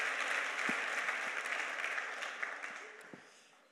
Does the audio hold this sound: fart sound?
no